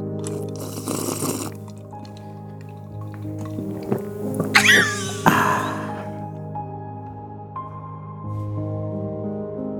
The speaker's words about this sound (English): Now listen to the water as I stick my fingers in and give it a taste. You're doing a great job. Refreshed. And let's finish with a full gulp.